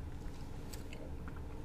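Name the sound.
sipping coffee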